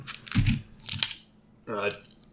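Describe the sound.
A bottle opener pries the cap off a foil-topped bottle of Great Lakes Brewery Pumpkin Ale: a few sharp metallic clicks and crinkly scraping bursts, followed by a short voiced murmur from someone.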